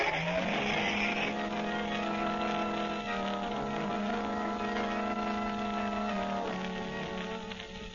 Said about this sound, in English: Away in his fast motor car sped the Blue Beetle, leaving the commissioner's daughter on guard over Bugs McGarty and his band of criminals.